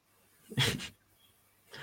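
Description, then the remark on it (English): A single sharp sneeze bursts out, a brief loud noisy blast lasting under half a second, followed by quiet and then a short breathy sound at the end. “Sorry, I'm gonna sneeze here.”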